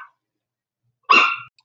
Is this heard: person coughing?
no